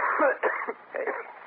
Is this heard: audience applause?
no